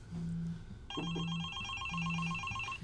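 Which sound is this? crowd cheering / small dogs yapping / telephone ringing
telephone ringing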